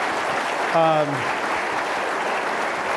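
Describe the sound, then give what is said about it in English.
Steady audience applause in San Francisco for a visiting national Republican leader fills the whole stretch at a fairly loud, even level, with a brief falling vocal whoop rising above the clapping early on. “Just coming here and being with us today, I think, is something to be applauded.”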